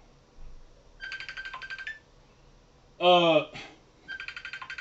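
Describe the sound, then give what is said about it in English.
A phone ringtone plays during a live broadcast in bursts of rapid, trilling electronic pulses that repeat after a pause, clear. A brief louder voice-like sound cuts in between the rings. “Sorry, y'all. I got a phone call.”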